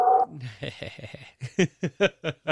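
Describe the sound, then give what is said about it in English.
A dog whimpers, starting with a thin high whine and then a run of short, uneven whimpering yelps, fairly quiet, with no one speaking. “What's your dog's name?”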